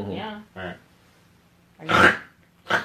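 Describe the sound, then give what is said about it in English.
A person imitates a pig with a few short, rough grunting snorts, fairly loud, separated by brief pauses. “I don't know what pig like sounds like to you.”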